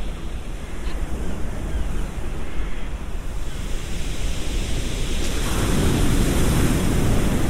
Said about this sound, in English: As the sea pulls back from the shoreline, it brings with it some pebbles, and you get that sound.